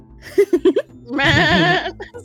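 A very happy ram, Ramathorn, bleats excitedly as it charges, runs someone over and stamps its feet, starting with a quick series of short, clipped calls, then a long, loud, wavering bleat before trailing off into brief softer noises.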